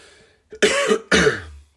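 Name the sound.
cough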